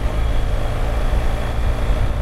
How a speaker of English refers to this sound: All right, I don't even know if you'll be able to hear me over the sound of the wind. Crossing this bridge now that separates Germany and Poland.